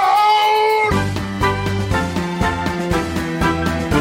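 A single drawn-out, cat-like meow rings out clearly for about a second, then it's cut off as rhythmic music with a thumping beat and bass line takes over.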